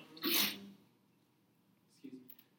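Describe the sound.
A single sharp, breathy sneeze bursts out, followed after a short pause by a brief murmur of someone starting to speak.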